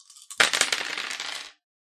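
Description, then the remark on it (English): A handful of dice clatter and tumble across a hard tabletop for about a second, fairly loud, with quick rattling bounces that settle to a stop, showing two tens, a nine and a five. No one speaks. “Oh my god, that's 2 tens! Yay! And a 9 and a 5! Big dice.”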